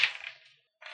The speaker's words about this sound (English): Whoa. Dice everywhere. Yeah. Dice proper.